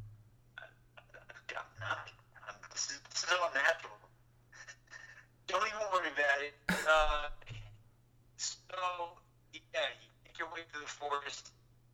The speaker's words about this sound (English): Move the phone closer to the. I don't think it's me. I think he's got bad connection.